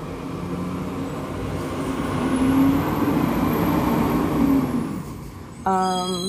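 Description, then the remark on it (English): A garbage truck collecting trash outside: its heavy engine rumbles steadily and swells in loudness, a low droning hum, ending with a sharp burst of harmonic whine like a brake or hydraulic hiss. “They doing trash, just hold on.”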